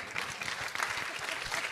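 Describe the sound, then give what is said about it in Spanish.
A burst of steady applause from a group, many hands clapping densely and continuously at a fairly even loudness for the whole stretch. “Maravilloso, me encanta, un aplauso.”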